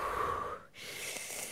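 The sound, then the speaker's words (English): A person who has just had hiccups takes a deep, audible breath in with a faint whistly edge, a brief pause, then a long, rushing breath out, with no talking. “Do a big breath in and a big breath out.”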